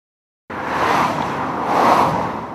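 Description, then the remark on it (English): Steady roar of road traffic beside Highway 20 on the east side of Bend, starting abruptly after a brief silence and swelling as a vehicle seems to pass by, fairly loud with no voices. “As she parks her car on the side of Highway 20 on the east side of Bend”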